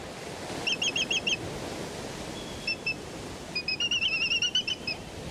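Black-footed albatross calls ring out in quick bursts of sharp, nasal, honking notes, pausing and resuming several times over a steady rush of wind or surf; thousands of the birds fly near the edge of the continental shelf, a couple of dozen miles off the Pacific coast.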